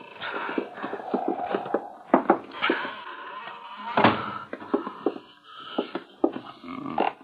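A long, creaking groan of an old, cobwebbed door, not opened for a long while, swinging open, rasping and stuttering for several seconds with uneven squeaks and clicks, moderately loud, with no one speaking.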